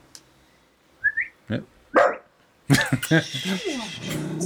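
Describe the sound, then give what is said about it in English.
A female dog barks at a person: a couple of short, sharp barks, then a louder, rougher run of barking and yapping that carries on to the end, preceded by a brief high squeak. “I'm not looking at you directly because I'm a shit house, but I'll bark at you.”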